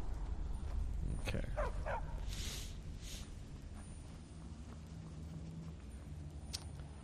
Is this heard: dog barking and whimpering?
yes